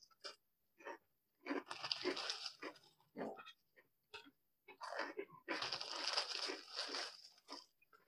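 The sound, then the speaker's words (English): Loud crunching on cereal pieces, with irregular bursts of chewing that pause briefly, then resume in longer stretches of dense, crackly munching. “Yeah, this is all very crunchy. It's all cereal.”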